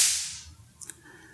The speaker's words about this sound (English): it looks like a mini firecracker. And it has two pieces of string that go on the outside. They're very long pieces of string because it's meant to, when you pull these two strings apart, the firecracker, if you will, in the middle is going to go off.